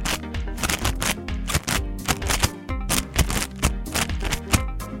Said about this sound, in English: These chips are good. They're Kettle Brand potato chips, y'all. From New York, it's cheddar. It's great taste. It's natural. And its net weight is only 1.5 ounces. That's 42 grams. These chips are good. Crunch it, crunch it.